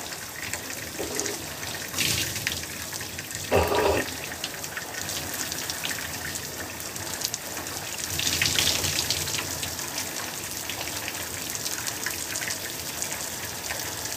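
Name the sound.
running water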